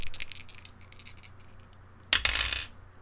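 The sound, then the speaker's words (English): A run of light, bright clicks and taps, then a sudden louder clatter that rattles for about half a second before stopping, like small hard dice tumbling across a surface. “So let's roll those good dice.”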